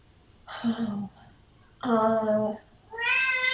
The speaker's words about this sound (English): Your cat screaming, that's scaring me the most.